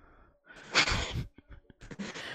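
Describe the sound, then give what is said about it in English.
A harsh, forceful cough bursts out, followed by a few shorter, ragged coughs and a rough clearing of the throat, loud and with no talking; coughing after drinking coffee. “Coffee coughs.”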